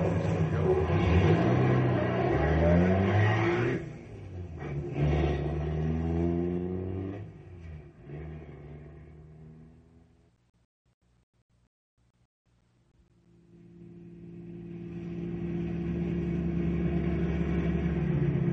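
A car engine revs loudly, rising and falling in pitch as it pulls away, fades to near silence, then another engine rumbles back in and builds steadily as a vehicle approaches.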